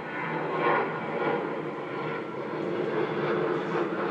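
An airplane's steady engine roar fills the air, a broad, continuous rumble with a slight swell and fade as it passes overhead. No voices are present.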